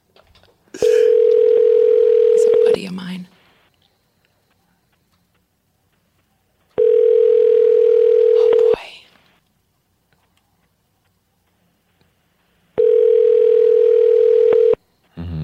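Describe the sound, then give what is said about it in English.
A phone rings out three times, each long steady electronic tone lasting about two seconds with regular pauses between, loud; a voice speaks briefly in one of the gaps. “After this, if you want to just call like George Lopez or something, that would work too.”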